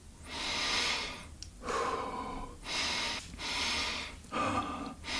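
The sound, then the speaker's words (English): Rapid, deep breaths in and out during a guided breathing exercise, about five loud airy cycles in quick succession, with brief pauses between each inhale and exhale. “Increase your breathing pace even more. Inhale deep into the belly, into your chest, and let go.”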